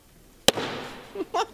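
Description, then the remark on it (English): A single sharp, loud gavel strike on a desk as the chair declares the House in recess cracks out and trails off in a short decay, followed by a brief snippet of voice starting up. “Oh my God, what the hammer ever do to you? Smacking it like an OG money.”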